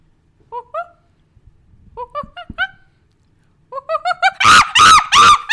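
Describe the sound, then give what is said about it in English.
A person imitates a monkey with high, squeaky hoots in short bursts, starting as sparse chirps and building into loud, rapid, strained shrieks near the end. “Great monkey!”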